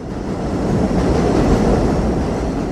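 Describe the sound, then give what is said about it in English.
A subway train on the number 7 line in Flushing, Queens, New York City, rumbles steadily, with a dense low roar and rattling of wheels on track, loud and continuous throughout with no voices. “Let me give you a background of the number 7 line and how that became the most important immigrant center of New York City.”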